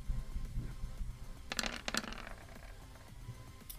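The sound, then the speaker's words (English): A handful of dice, rolled for a sword attack, clatter onto a hard tabletop in a quick burst of sharp rattling clicks, tumbling for about half a second before settling, with faint murmur around it. “God, you vomited dice again.”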